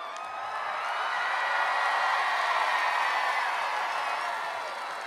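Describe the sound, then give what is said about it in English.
Hands clap steadily for about five seconds at a band's rock show, applauding the drummer: a dense, even patter of many claps blending into a continuous wash that swells slightly and then eases, with no voices over it. “We're having to clap ourselves because that was so pathetic.”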